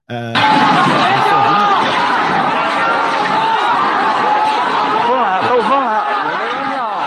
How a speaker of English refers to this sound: Yeah, I'm sorry, that was very loud. The people are shouting. That's why I said the people are shouting.